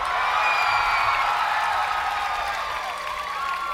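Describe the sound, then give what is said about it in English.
A large festival crowd at Fort Adams, looking out at Newport Bay, screams on cue as a special effect, as if being swallowed by a whale, many high voices overlapping into a steady, loud roar that holds for nearly four seconds, with no single speaker standing out. “And that special effect is the sound of a multitude of people, or at least as many people can fit here at Fort Adams, the sound of those people screaming like they're being swallowed by a whale.”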